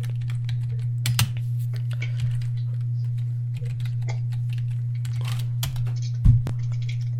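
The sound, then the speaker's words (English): Rapid, irregular typing on a computer keyboard as someone types a name into a search, with clicky keystrokes scattered throughout, a couple of louder key hits, over a steady low electrical hum; no one speaks. “I'm typing Lars Sullivan.”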